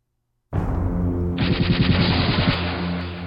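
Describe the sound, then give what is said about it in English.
A sci-fi particle cannon fires with a sudden, loud blast that swells into a sustained roaring, crackling energy discharge, pulsing rapidly in the middle before trailing on. No voices. “I grinned as the shot from my particle cannon crossed the Rio Grande, the shockwave slicing through the water before smashing into the immense 10-gallon hat on the head of the 30-foot-tall mechanoid there.”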